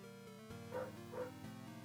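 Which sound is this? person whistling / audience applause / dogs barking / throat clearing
dogs barking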